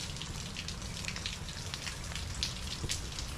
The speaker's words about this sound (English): We have gotten a lot of rain in the past couple days. There are actually massive puddles forming on my lawn.